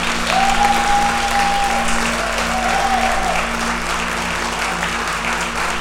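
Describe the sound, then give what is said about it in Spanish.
Sustained applause from a crowd for Jesus, the King of Kings, a dense steady wash of clapping that stays loud for several seconds, with a faint tonal whistle-like hum sliding through briefly. “¿Alguien puede darle un aplauso al Rey de Reyes?”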